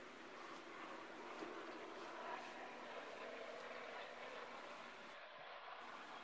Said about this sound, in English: Another plane.